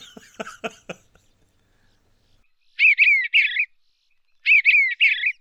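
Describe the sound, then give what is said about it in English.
Eastern bluebird song: two short, soft warbled phrases separated by a pause, each a quick run of burry, gently rising and falling whistled notes. A brief burst of clicky noise comes first. “So give you an example, like Eastern bluebird, they will say, cheer, cheerful charmer.”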